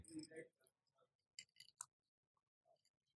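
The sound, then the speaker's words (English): Rocks glasses holding old fashioned cocktails over cube ice clink together in a toast at the Stillhouse, two or three bright taps in quick succession, with faint murmuring voices and small handling sounds around them. “We've got it over cube ice in a rocks glass.”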